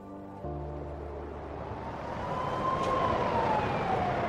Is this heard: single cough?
no